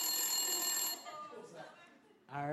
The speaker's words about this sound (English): And at the last 10 seconds of their time, they're going to hear a ticking time bomb sound effect that goes into an alarm. So here it is. You're going to hear this. This will be the wind down. So this means wrap it up.